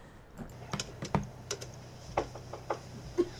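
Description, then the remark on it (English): Irregular clicking of keys on a computer keyboard as someone works on a program for their computer, a dozen or so sharp taps at uneven intervals with a low hum underneath and no one speaking. “Just working on a program for my computer.”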